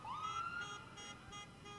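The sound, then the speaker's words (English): An ambulance siren wails on a street, its tone sweeping upward and holding high, with repeating pulsing tones behind it over a steady low traffic rumble; the siren is fairly loud. “There's more ambulances coming. We're moving away for the ambulances again.”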